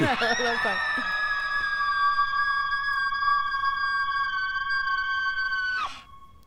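A child in a movie trailer lets out one long, piercing scream, held steady at a high pitch for about five seconds before cutting off abruptly. It is loud, with no talking over it.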